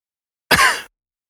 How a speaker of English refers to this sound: I don't know, like, now that when I cough, I was like, I'm going to die. It's not the same as when you smoke a lot and you cough just because. Like, now every time I cough, it's like a traumatic experience.